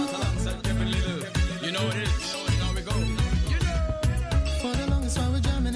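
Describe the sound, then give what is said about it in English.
A full music track plays loudly and continuously, with a steady beat, thick bass, and melodic lines layered on top, and no one speaks over it. “This is a good song turning on.”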